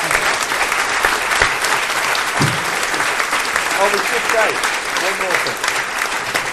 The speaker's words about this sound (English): And, well, nothing more remains to be said than a massive, huge round of applause, please, for a phenomenal guest, Mr. Jack Straw.